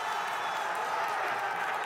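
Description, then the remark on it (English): A race crowd at Abu Dhabi, around turns 2 to 4, cheering as Verstappen overtakes Hamilton: a steady, dense roar, a constant wash of many voices and clapping that holds at an even level for the full two seconds without any single voice standing out. “Look at it, can you see people going crazy? Yeah, people are going mental.”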